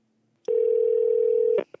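A single steady electronic telephone ringing tone hums for about a second, clear, then cuts off with a couple of sharp clicks as the call connects. No one speaks.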